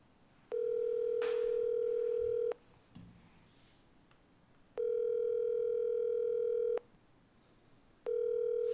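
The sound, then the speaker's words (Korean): A telephone ringback tone repeats through an earpiece, steady electronic buzzing bursts of about two seconds separated by short pauses, ringing three times with nobody picking up and no voices. “네, 전화 안 받는 거를.”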